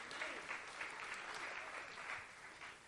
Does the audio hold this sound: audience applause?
yes